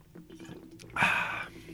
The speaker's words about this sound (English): That sounds like you're drinking from a fucking water cooler. That's right. Straight from the tap, baby.